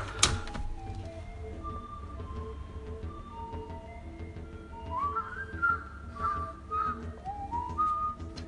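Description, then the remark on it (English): A garbage truck's tinny electronic jingle plays a simple melody of sustained, mid-pitched notes, growing slightly louder toward the end over a steady low rumble, with a brief clatter at the start. “So I don't know if you've if that recorded, if you heard that, but that was the garbage man.”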